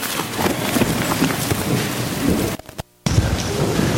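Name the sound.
rain falling outside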